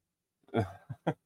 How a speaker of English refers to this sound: Kyle says he heard you clear your throat, and would you mind keeping it down because this is a professional broadcast?